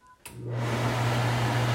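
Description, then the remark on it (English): A click, then an over-the-range microwave's vent fan, switched on by an Alexa voice command, whirs up into a steady, loud rush of air with a low motor hum underneath, holding constant to the end. No one speaks. “So there you go. You hear the fan.”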